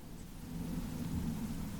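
A low, steady rumble of thunder rolls under a broad hiss of rain, swelling slightly after the first half-second and holding at a moderate level with no voices.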